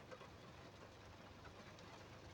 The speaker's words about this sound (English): You can probably hear the rain that's been dropping the entire time.